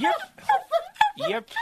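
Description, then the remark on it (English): A person's voice imitates a small dog with about six quick, high-pitched yaps in a steady, bouncy rhythm, fairly loud. “Now I want you to be a little doggy barking.”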